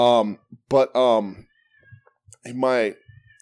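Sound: cat meowing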